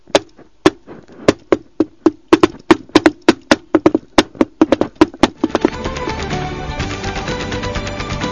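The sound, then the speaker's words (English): A long, fast run of sharp knocks on a plain wooden door at a tradesman's entrance at the end of a narrow passageway, tapped out in an uneven, showy rhythm, loud. After about five seconds a dense, steady wash of sound takes over. “Oh, be quiet and knock on the door.”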